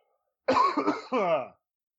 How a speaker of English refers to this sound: Hold on. I have to cough real quick. Don't mind me.